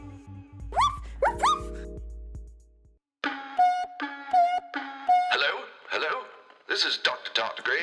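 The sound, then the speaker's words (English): A person imitates a dog barking with a few quick, yappy woofs, followed by warbling, crackly electronic noise like a distorted radio transmission. “Oh no, I am barking like a space dog. Ruff, ruff, ruff.”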